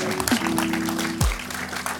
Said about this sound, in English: Jumaane Williams, can we give him a round of applause? Thank you, thank you.